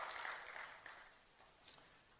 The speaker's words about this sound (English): Clap your hands together for the Lord and please be seated.